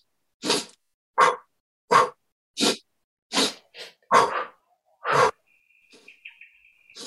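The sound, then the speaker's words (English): A person demonstrating a breathing exercise makes about eight short, sharp sniffing inhales through the nose, loud and breathy, spaced roughly every half second or so, followed by a faint high chirping sound. “So you sniff.”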